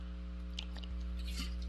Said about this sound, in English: I'll just take a little gulp here.